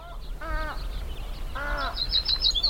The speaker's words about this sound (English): It's dusk at the Navopatia field station, and a cacophony of warblers, willets, and other birds fills the otherwise calm, still evening. Navopatia is a small fishing town on the Hiabampo estuary near the Sonoran border with Sinaloa